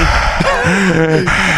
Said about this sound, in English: Do you hear the other brother? Yeah, breathing.